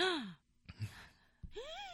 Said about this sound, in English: First gasp of the year.